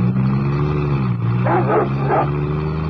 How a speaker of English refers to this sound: That sounded like the Hound of the Baskervilles. Guard dogs.